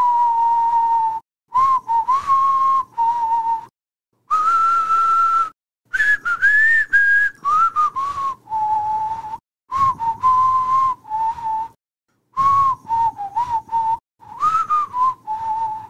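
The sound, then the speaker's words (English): A person whistles a tune up close, a clear, steady melody broken into short phrases with brief pauses between them, with pitch rising and dipping. No one speaks. “First of all, can you even whistle?”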